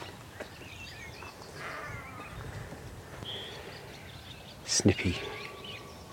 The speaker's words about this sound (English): Swallows and house martin calls.